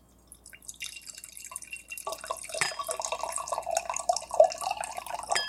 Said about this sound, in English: It's got one of those aerator tops on it. So it took forever to pour, but it was kind of cool the way it just separated everything.